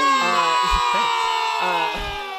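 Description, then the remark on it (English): A loud burst of crowd cheering and whooping with applause, sustained for about two seconds at steady volume before easing slightly at the end. “See, I'm gonna put applause there.”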